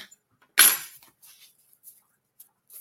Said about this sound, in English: Let me ding the bell.